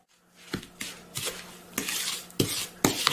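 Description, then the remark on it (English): A utensil scrapes and clinks against a bowl while stirring a thick mixture of snow, vanilla and refrigerated sweetened condensed milk for about 2 minutes, with sharp metallic taps at irregular intervals over a steady scraping swish. No one speaks. “Well, I mixed that for a solid 2 minutes.”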